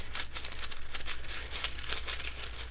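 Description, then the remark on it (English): Small hard rune stones clatter and rattle inside a cloth bag as they are shuffled to draw one, a busy run of clicks and shuffling rustles with no talking. “shuffling through my bag of runes so I get the right one.”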